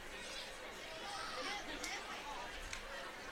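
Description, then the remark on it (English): Dense crowd chatter from a big crowd at a football game between the Huskies and the Big Red, with seating packed on both sides and in the end zones; a steady wash of many overlapping voices with no single speaker standing out, holding an even level with a couple of brief sharper spikes. “Big crowd. They're in the end zones. The seating is packed on both sides.”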